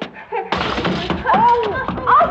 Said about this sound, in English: I'm all right. I just tripped on one of Johnny's toys.